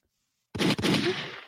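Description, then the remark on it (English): After a brief silence, a loud gunshot sound effect bursts in, a sharp second crack following almost at once, then a rumbling, noisy tail that slowly fades. “Where's my gunshot at?”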